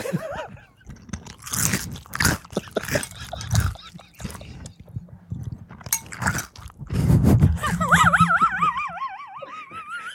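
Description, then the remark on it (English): Loud crunching as someone chews crunchy cereal in rapid, irregular bites, with a high wavering whine rising over the chewing near the end. “I have have some crunchy cereal.”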